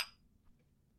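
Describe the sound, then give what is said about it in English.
Glasses clink together once in a toast, a bright chime with a short ringing decay that fades into quiet. “Let's do it right. Cheers.”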